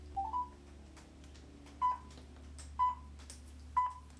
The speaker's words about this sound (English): So you dial 123 for the time?